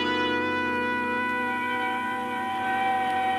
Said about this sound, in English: The sound of an ambulance wheeling into the receiving room below shatters your train of thought.